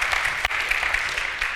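A crowd at New Hope claps steadily and densely because 15 people prayed to receive Christ in the last two services, a continuous wash of many hands with no voices over it, staying at an even moderate loudness throughout.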